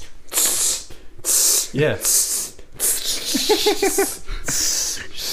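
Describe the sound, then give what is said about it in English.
A voice imitates a cologne spray with a series of about six sharp hissing bursts, separated by brief voiced sounds and what resembles laughter. “Like, oh, it's like a tiny spray though.”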